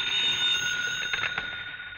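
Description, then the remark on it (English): A telephone bell rings steadily for the whole moment, a bright, shrill metallic trill with a few louder pulses partway through and no voices. “Your phone should ring soon.”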